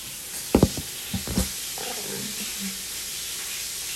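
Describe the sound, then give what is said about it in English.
Chicken sizzles steadily in a pan as someone's mother cooks, a constant crackling hiss, with a few soft knocks early on and faint murmuring voices in the background. “I feel like they just hear this chicken frying in the background.”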